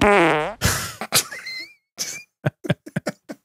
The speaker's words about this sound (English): What story will this fart tell?